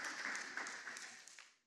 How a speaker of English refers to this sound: It's a good dad right there. Everybody give Dad a round of applause.